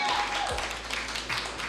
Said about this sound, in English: Give it up for a round of applause.